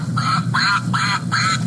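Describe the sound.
A toy duck named Jackie quacks three times in quick succession, loud, each squawk short and nasal with a steady rhythm and no voices around it.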